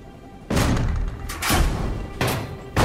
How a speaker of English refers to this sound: They did it! They smashed the door open! They got inside the boiler room, but they haven't stopped the sabotage yet.